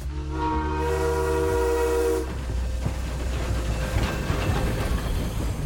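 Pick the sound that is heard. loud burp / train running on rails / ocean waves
train running on rails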